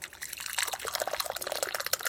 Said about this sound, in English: Now, I can't reach the tea from where I am. It's all right. Would you mind pouring it out? I think that is the least I can do.